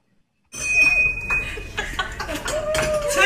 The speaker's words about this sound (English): Let's take a look at her ringing the bell in honor of her beating cancer.